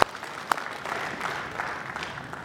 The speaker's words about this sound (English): Our goal, yeah, we can clap for that. You bet.